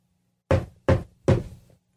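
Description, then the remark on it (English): Three sharp, loud knocks on a door in steady succession, each with a quick decay, with no voices around them. “I go to the door. No one's there.”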